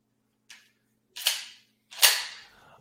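Three sharp shotgun blasts: a faint first crack, then two loud, booming reports with short decaying tails, spaced under a second apart. No voices.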